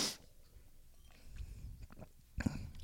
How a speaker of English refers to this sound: I like it when you gulp in the mic.